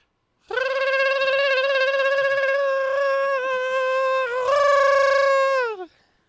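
A wild bird sound effect: one long, shrill, buzzy call held steady for about five seconds, wavering briefly partway through, then sliding down in pitch as it cuts off. No talking.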